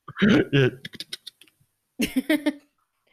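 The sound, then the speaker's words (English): A voice mimics keyboard typing, as if Googling something, with a quick burst of mouth clicks and clattery tapping sounds, fairly loud, then a short pause before another brief imitated flurry. “quick keyboard sound effect.”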